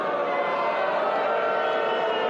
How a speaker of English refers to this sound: What do you have against the Marquee Network? Believe me, you won't be booing about that in a year. You guys won't be booing about the Marquee Network in 1 year.